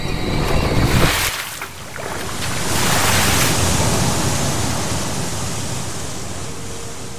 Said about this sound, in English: The boat cut through the waves like a knife. There was no one at the oars. Not a soul.